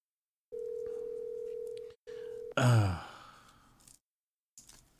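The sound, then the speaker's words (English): A steady electronic ringing tone of an outgoing phone call sounds twice, the second burst cut short, then a loud sigh-like exhale follows before the line goes quiet. “Pick up the phone.”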